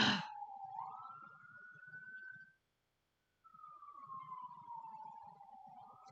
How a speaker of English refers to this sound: Oh, great. And now we have sirens.